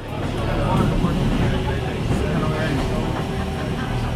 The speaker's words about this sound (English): They went together, and their report starts as they're on the train that takes you to the top of the Corcovado Mountain.